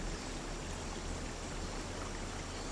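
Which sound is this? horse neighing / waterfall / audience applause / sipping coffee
waterfall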